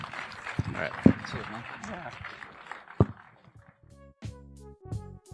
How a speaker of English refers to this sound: Well, thank you very much. A really huge round of applause to Ewan and his directorial debut.